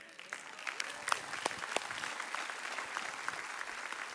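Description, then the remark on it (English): An audience breaks into steady applause after a sermon on Jesus' grace, a dense patter of many hands clapping at once with a few sharper claps standing out, holding at an even, moderate level throughout. “And the reason we're all clapping is because we've all experienced that grace.”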